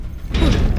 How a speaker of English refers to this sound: The door's open! I guess the fairies are getting rusty.